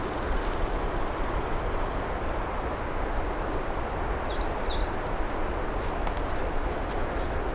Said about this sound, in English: Oh, I can hear the ticking of a myrtle warbler, also known as yellow-rumped warbler.